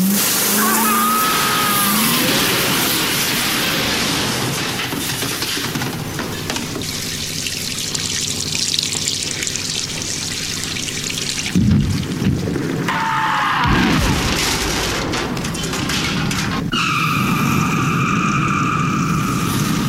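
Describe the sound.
A car engine roars and revs loudly amid rushing noise, with sharp tire squeals cutting in toward the end and voices shouting faintly underneath.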